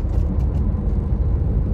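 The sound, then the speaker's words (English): Steady, loud low rumble of road and engine noise from inside a moving car as it crosses a lane beside a milk truck, with a faint whir of traffic and no voices. “I gotta cross another lane here and not die by this milk truck.”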